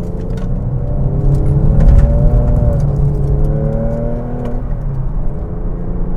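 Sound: car engine accelerating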